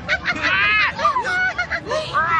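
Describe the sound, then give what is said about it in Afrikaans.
Loud, harsh screeches of a flock of green, red, yellow and blue parrots in a cage across the way overlap continuously, with shrill rising and falling calls layered over one another as they squawk together. “Wie skreeu so? Dit is die papegaaie daar oorkant in daardie hok. Hulle maak altyd 'n groot lawaai.”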